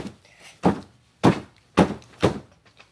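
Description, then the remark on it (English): Four dull, muffled thumps of a hammer striking a bed, spaced about half a second apart in an uneven rhythm, each a soft low impact with a short decay and no talking. “Yeah, I'm just hitting it on my bed.”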